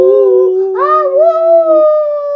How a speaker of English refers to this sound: Suddenly, a chorus of howls echoed through the air, growing louder and more intense.